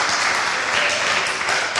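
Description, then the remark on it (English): Steady, dense applause from a crowd, a continuous wash of many hands clapping at an even loudness throughout, with no voices rising above it. “Prolonged applause.”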